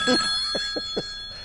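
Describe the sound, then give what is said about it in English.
A telephone rings with a bright, bell-like tone, sounding as a quick series of short rings over a steady background hum. Low-level voice activity may be present at the start. “The phone would just ring endlessly. Pick up... Somebody pick up the phone!”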